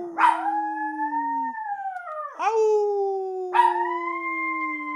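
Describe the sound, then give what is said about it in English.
A dog howls in long, sustained, wavering notes, three rising-then-falling howls starting in quick succession, with fainter overlapping howls of distant coyotes blending in behind it. “And so I like that he was howling with the coyotes.”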